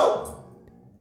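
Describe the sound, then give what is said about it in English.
A dog gives one sharp bark out the door that rings out briefly and fades, sounding somewhat muffled, with no talking. “I do not know why my dog is barking out the door.”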